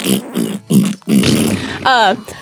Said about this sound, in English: oh, you're talking about the fart noises.